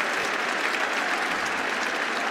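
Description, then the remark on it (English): A crowd applauding steadily, a dense, even wash of many hands clapping at a constant loudness with no voices standing out, the ripple of claps from a cricket ground audience marking a 50 partnership between two batsmen, Joe Root among them. “Round of applause from the crowd.”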